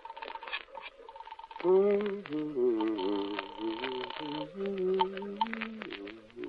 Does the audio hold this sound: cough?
no